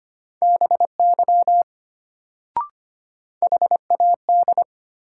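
Morse code practice at 25 words per minute, sending sentences from a drill of the top 100 words: a steady mid-pitched beep keyed rapidly into dots and dashes, in two bursts separated by a pause with a single sharp click between them.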